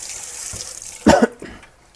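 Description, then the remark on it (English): A faucet runs in a steady, hissing stream as someone washes up between mixing ingredients, with a brief clunk or cough-like burst midway before the water settles back to a soft flow. “So going to wash up, and then we're going to get back to our main set of ingredients.”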